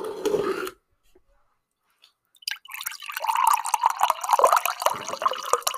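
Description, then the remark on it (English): A short burst of noise, a pause of near silence, then a bottle of aloe vera juice drink (aloe vera, Fiji apple and pear, called Crisp) shaken hard for about three seconds, the juice sloshing and splashing rapidly and steadily, fairly loud. “Wait, should I got shake it up.”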